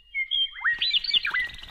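Birds chirp in a quick, lively flurry of high, bright tweets and warbling trills, clear against a quiet background, with no voices.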